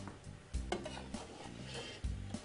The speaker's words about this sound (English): Let's go over to our yuca fries. They look just about ready. We can pull those out now. Nice and golden brown, crispy.